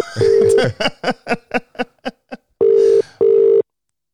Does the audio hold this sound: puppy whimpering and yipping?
no